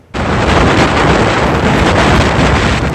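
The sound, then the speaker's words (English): A loud, steady roar of hurricane-force winds from Storm Dennis buffets the microphone while massive waves crash beneath it on the North Atlantic. The sound starts abruptly and stays intense throughout, with no voices. “Hurricane winds and massive waves are roaring across the North Atlantic, where Storm Dennis has landed.”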